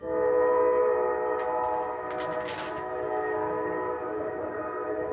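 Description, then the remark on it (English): A loud, sustained train horn blares continuously for several seconds at 1:45 in the morning, loud enough to be heard across town. Its steady multi-tone chord holds strong, with a brief burst of hiss partway through, and there is no talking. “You're not gonna hear nothing except for train horns blowing, so.”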